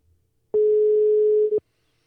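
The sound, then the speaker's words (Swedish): A single loud, steady telephone ringing tone from an outgoing call to someone at ABF in Botkyrka, lasting about one second, then silence, with no talking. “ska vi ringa upp”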